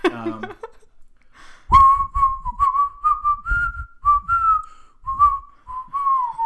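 A person whistles a bouncy tune from the Disney film Mary Poppins, a bright steady pitch stepping through short phrases in a lively rhythm for several seconds, with soft breathy laughter just before it starts.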